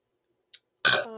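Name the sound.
burp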